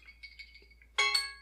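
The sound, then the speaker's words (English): A kitchen timer goes off with loud, bright, ringing electronic beeps in quick repeated bursts, preceded by faint high tones and soft clinks. “The fucking timer just went off.”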